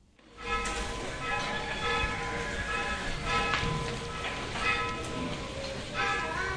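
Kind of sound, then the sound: signal or alarm, tolling church bell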